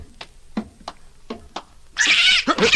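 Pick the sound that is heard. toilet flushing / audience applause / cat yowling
cat yowling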